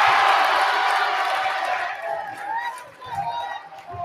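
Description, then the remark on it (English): A home crowd at a basketball game erupts in loud cheering after a three-point shot, peaking at the start, then gradually easing off over a few seconds, with scattered shouts and whoops rising through the roar. “The home crowd liked that one.”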